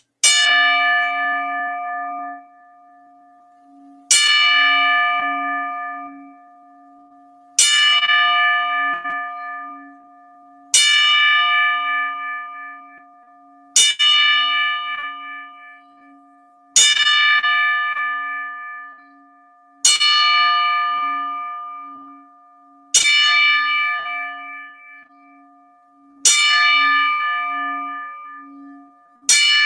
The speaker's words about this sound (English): We would like to ring the bell 10 times in memory of Butch Reed